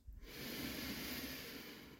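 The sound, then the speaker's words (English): A single slow, drawn-out breath, soft and airy, steady for about two seconds with no talking. “Thanks for breathing with me.”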